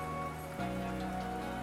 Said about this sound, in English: Oh, can you hear that? Just started raining outside.